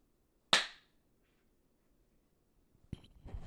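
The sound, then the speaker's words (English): One sharp, loud hand clap rings out and fades quickly, leaving a stretch of silence before a brief click and some rustling noise at the end. “Or here, I'll do a clap.”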